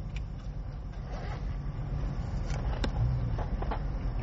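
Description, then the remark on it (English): A steady low rumble fills the space, road and engine noise inside a moving car while driving to get a burger, with a few faint clicks and taps over the constant drone. “No, we're just in the car.”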